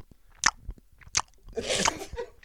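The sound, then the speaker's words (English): A person imitates a male dog licking itself at 1:30 in the morning with wet, smacking mouth noises: a few sharp slurpy clicks, then a longer, busier stretch of squelchy lapping. No one speaks. “But yeah, it's a very disturbing sound though. At 1:30 in the morning. What's that sound again?”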